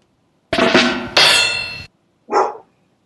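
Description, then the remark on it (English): A dog barks three times: two drawn-out, rough barks back to back, then a short pause and one quicker, softer bark. No one talks over it. “Oh, thanks, dog. The dog approved.”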